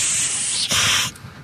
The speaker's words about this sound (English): Thunderous applause and loud hissing. In parentheses.